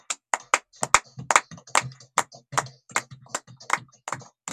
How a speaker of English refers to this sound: Amen. Amen. Let us give a clap of it to Jesus Christ.